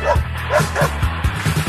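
A small dog, Goodyear, lets out a quick series of short, yappy barks, fairly loud, with brief whimpering yips mixed in over about two seconds.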